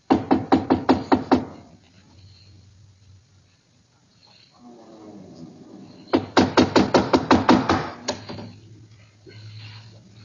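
Loud knocking on the door of a ship's captain's cabin comes in two quick bursts of about eight or nine raps each, separated by several seconds of quiet low background noise.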